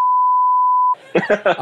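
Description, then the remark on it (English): A single steady, loud electronic beep holds for nearly a second, like a long Morse dash, then cuts off and a voice starts talking. “I'm going to have to learn Morse code just in case this ever happens.”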